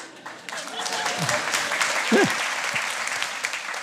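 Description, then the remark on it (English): An audience applauds steadily for about four seconds, a dense patter of many hands at even loudness, with a brief voice rising out of the clapping partway through. “I'd say the Samaritans probably deserve more of a round of applause than your dad's.”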